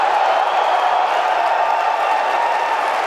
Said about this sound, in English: And the applause is crazy, because not only did they do all the things opposite what Microsoft is being vilified for,